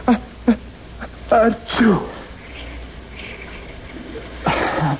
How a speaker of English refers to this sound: I have to sneeze. Don't you dare. I can't help it.